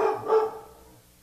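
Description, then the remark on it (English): A dog barks twice in quick succession, moderately loud, with the second bark trailing off into a short fading tail. No one speaks. “My dog's going to chime in.”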